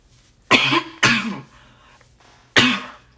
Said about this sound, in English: Oh my gosh, why am I always coughing on my hair?